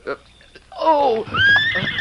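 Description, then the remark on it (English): A horse named Silver lets out a loud whinny lasting over a second, its pitch wavering and rising, after a brief voice sound at the start. “Steady, Silver.”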